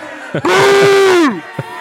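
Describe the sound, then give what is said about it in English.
A computer-generated crowd sound effect: a loud, sustained burst of yelling and booing holds one steady pitch for nearly a second, then drops away, framed by short vocal bursts just before and after. “To me, that crowd is getting really loud, dude.”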